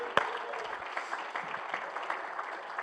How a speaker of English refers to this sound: Oh, come on, clap your hands unto the Lord tonight.